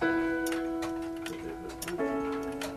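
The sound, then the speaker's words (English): An antique clock ticks steadily, its crisp mechanical clicks repeating over a sustained, bell-like ringing tone that shifts pitch partway through. No one speaks. “a qualified clock repairmen, craftsmen who repair and restore instruments that have survived the generations.”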